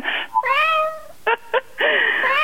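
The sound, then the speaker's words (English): A sick cat meows repeatedly in strained, wavering cries, one drawn-out wail followed by two short yelps and another harsh, raspy yowl, loud with no one talking. “That is one sick feline.”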